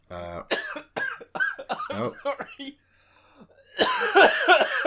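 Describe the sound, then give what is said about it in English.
Loud coughing bursts break out, with talking voices around them and a brief quiet gap before a harsh, noisy stretch near the end. “Well, seeing as he's having a cough, I'll clear my throat as well and edit it out.”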